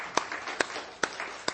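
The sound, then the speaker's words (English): A group claps hands in unison as practice of the command to clap your hands, four sharp, even claps roughly half a second apart over a soft, steady background of murmuring noise, with no clear talking. “This applause is not for me. This is just practice, right? We're clapping our hands.”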